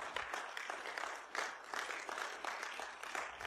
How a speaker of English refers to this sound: And so, hey, you can clap. It's okay.